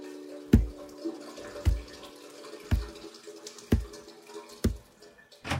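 Shower water drips steadily, one distinct drop roughly every second, about six in all, clear over a faint hum.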